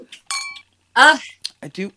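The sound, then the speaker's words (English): Wine glasses clink together once in a toast, a bright ring that hangs briefly before fading, followed by people speaking cheerfully. The glasses hold a red wine drink with ice, mint and blueberries called Queen Priscilla. “So are you guys ready? Cheers. Cheers, my love. Cheers.”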